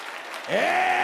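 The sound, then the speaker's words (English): An audience at a church service claps hands in a dense, steady wash of applause, and about halfway through a sustained tone slides upward and holds over the clapping. “David said, oh, clap your hands, all ye people.”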